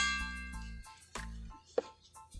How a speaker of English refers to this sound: Let's ring the bell.